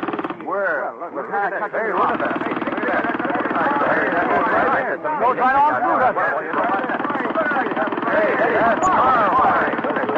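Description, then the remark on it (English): A pneumatic rock drill powered by air pressure runs steadily on a big piece of rock for the whole stretch, a loud, dense rattling roar with a constant buzzing pitch and warbling, voice-like overtones. “This is five times faster than any drill I've ever seen or heard of.”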